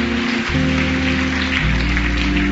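A crowd claps steadily, a dense, continuous patter of many hands, while low sustained keyboard chords hold underneath and shift once partway through.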